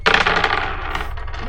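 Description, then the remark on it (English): Four dice clatter and tumble across a table in a quick burst of rattling clicks, fairly loud, settling within about a second and a half. “Four dice.”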